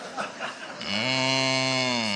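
donkey braying hee-haw

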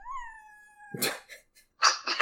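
cat meowing

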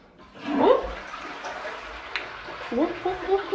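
toilet flushing

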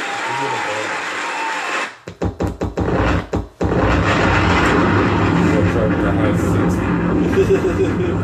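bomb explosion sound effect

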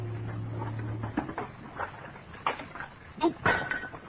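washing dishes

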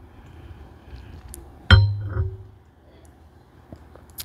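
wine glass clinking

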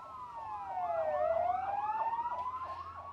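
police car siren

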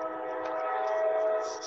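train passing by

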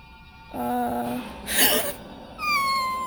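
dog making noise

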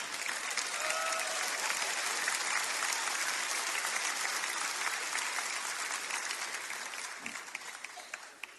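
audience applause

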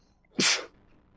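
a sneeze

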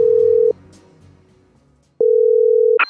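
telephone ringing tone

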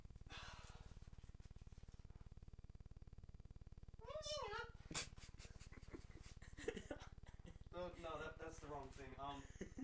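dog panting and whimpering

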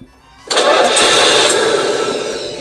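car engine starting

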